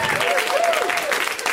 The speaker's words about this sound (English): First of all, round of applause for that gentleman right there.